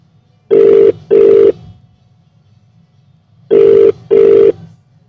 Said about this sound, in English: Okay, well, he's calling right now. Hopefully it should come. Maybe we turn it up on the...